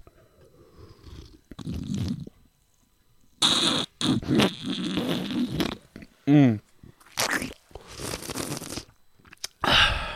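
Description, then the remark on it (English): Sips and swallows of a Joker Mad Energy energy drink, with wet slurping bursts and gulps coming in quick succession, loud and intimate, followed by a satisfied murmur. “Let's get some ASMR on this real quick.”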